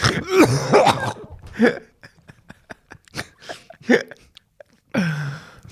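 Abrupt hiccups from one person, some voiced and gulping, others clipped, arriving in an uneven series with brief gaps and a few throaty, cough-like catches between them.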